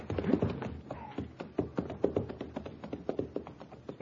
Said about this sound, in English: I rented the horse and buggy in Cheyenne